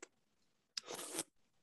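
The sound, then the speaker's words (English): A single short, airy slurp of a sugar-free Red Bull energy drink, a hissing, bubbly rush lasting about half a second, preceded by a faint click and followed by quiet. “That slurping sound.”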